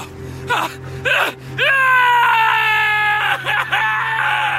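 man screaming in terror

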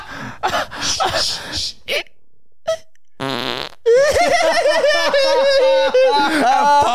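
fart

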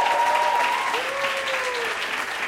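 audience applause

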